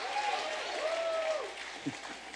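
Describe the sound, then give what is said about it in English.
A crowd claps steadily in a dense, continuous patter after being told to clap their hands and say "yes, I believe," with a few voices calling out over the applause for a couple of seconds. “Clap your hands and say, yes, I believe.”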